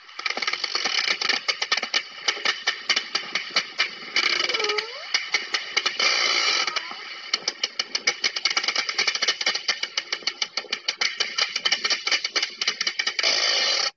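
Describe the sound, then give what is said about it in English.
Dense, rapid echolocation clicking from a deep-sea animal, played back from a phone, crackling and rattling steadily for the whole stretch, with bursts of faster trains and a brief rising whistle partway through. No voices. “And I just want to play this for you, because this is going to get really interesting in a minute, because the clicking of these guys is just insane.”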